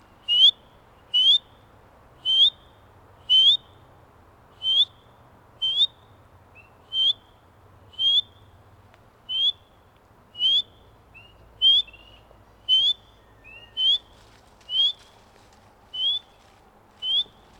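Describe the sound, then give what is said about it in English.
An artificial recorded clip of spring peeper frog calls: a steady series of about sixteen short, high, rising peeps, evenly spaced roughly once a second, loud and clear over a faint low background hum. “That's a little artificial sound clip of a spring peeper.”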